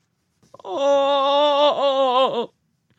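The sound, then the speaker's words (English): A loud, shrill scream bursts suddenly from the throat of a chained figure walled into a recess, ringing out for nearly two seconds, its pitch holding steady then wavering and dipping twice before it breaks off. No talking. “A succession of loud and shrill screams, bursting suddenly from the throat of the chained form, seemed to thrust me violently back.”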